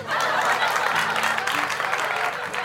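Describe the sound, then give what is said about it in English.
A large crowd claps steadily and enthusiastically outdoors along the banks of the River Shannon in Limerick, Ireland, after recitations of Edward Lear's limericks, a dense wash of applause with faint murmurs and chuckles mixed in, sustained throughout the short stretch. “An enthusiastic crowd had gathered along the banks of the River Shannon in the Irish city of Limerick to enjoy recitations of Edward Lear's limericks.”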